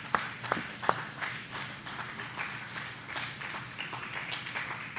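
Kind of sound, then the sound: crowd, audience hand clapping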